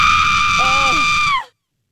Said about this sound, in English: I know, generic lady screaming.